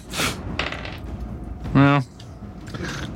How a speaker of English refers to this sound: Roll the dice.